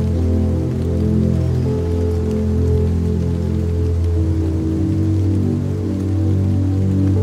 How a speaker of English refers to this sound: Though it rains now, for sure we know, the sun will rise again